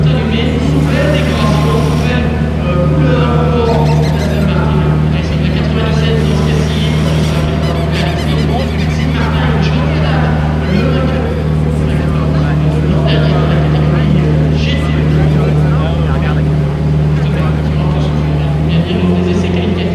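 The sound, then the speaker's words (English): The engine of a new Aston Martin GT race car, the Pro car run by ProDrive, drones loudly and steadily with a deep, constant rumble, shifting pitch slightly near the end, while indistinct voices murmur underneath. “It's an Aston Martin now. Which one is this? This is the new one, the Pro car.”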